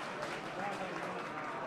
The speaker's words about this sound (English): Polite applause from the North fans.